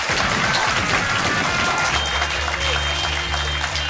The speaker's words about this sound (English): Ladies and gentlemen, massive round of applause for Tessa and Stevie.